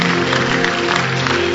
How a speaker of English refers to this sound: Clap your hands, celebrate the Lord. Hallelujah.